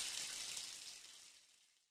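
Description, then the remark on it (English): A steady hiss of running shower water, bright and spraying, heard alone without voices and gradually fading away over a couple of seconds. “just in time for your Monday morning shower. And in the meantime, keep scrubbing.”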